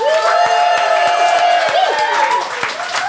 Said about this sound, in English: please applaud now.